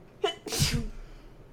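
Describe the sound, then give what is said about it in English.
A single sneeze: a brief rising intake of breath, then a loud, explosive burst of air that fades quickly into near silence. “Bless you.”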